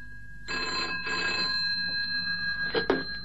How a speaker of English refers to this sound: At 9:30 p.m., my cuckoo poked his head out the clock door for a solitary peep, and then the phone rang.